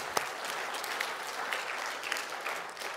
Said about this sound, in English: Somebody say amen and clap your hands for the Word of God this morning.